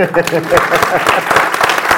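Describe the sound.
Audience applause: many hands clapping in a dense, steady crackle that stays fairly loud throughout, with a faint murmur of voices mixed underneath.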